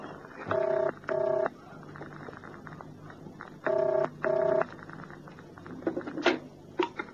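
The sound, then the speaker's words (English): Touch-tone beeps of a phone being dialed to call a flat: four clear, fairly loud key tones in two quick pairs separated by a pause, followed by a couple of faint clicks and handling sounds. “Who are you ringing? My flat.”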